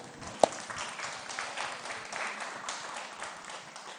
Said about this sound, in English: I'm still very moved by the baptism celebrations that we had at the retreat. Wasn't that awesome? Yeah, you can clap.